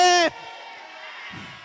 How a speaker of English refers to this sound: In Jesus, if you believe that, let me hear you shout a louder.